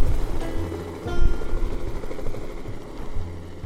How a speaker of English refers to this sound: Okay, so we've got a couple of guys. They are ferrying 5-gallon buckets to the helicopter. In a helicopter. Dumping fish in. How many fish in that thing? I believe it was about 70 pounds.